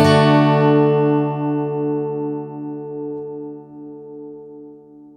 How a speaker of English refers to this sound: Your guitar string mainly produces that tone, but you get some overtones in the deal as well. Playing a bunch of different tones together in a chord gives you even more overtones, all splashing into each other.